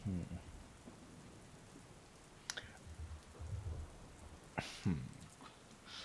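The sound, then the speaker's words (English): Steady rain hisses throughout while low rumbles of thunder from an approaching storm roll underneath, punctuated by a couple of sharp transient cracks; brief fragments of a voice surface faintly at moments. “The storm is starting to pend a little closer, but”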